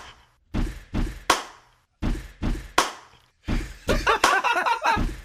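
A stomp-stomp-clap rhythm built from dull thumps: two low thuds followed by a sharper clap, repeated twice, then a denser burst of rapid hits and a final thud, all close and loud.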